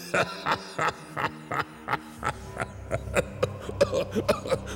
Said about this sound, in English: Excuse me, I'm having a bit of a coughing fit.